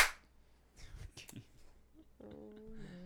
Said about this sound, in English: Clap. One of you clap. Louder. Okay. Sounds good. Okay. We're going. Are you recording? Yeah. Record. I am officially. We clapped. Now clap. There we go.